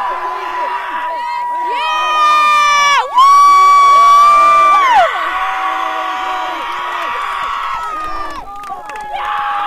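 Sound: crowd cheering and whooping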